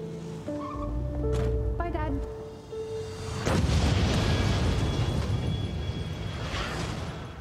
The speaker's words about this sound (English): An explosion rocked the city today.